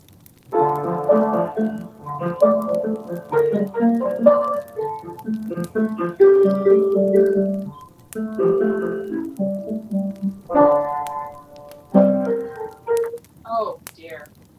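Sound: piano playing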